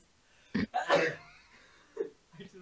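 sneeze

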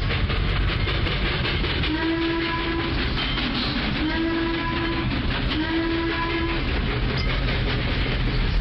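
train rolling along rails

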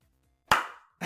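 clapping

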